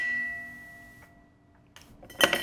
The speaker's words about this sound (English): So let's make this drink and find out what it's all about. I will toss some ice in the shaker.